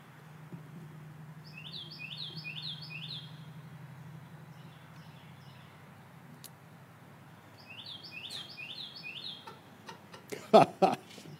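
A small bird chirps in two quick bursts of high, rapid repeated notes, one early and one later, over a low steady hum, with a few sharp clicks near the end.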